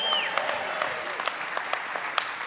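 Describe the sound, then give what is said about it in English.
An audience breaks into applause, a steady patter of many hands clapping with a few sharper, louder claps standing out, sustained for a couple of seconds without any talking. “Okay, now nobody applauded when I said that.”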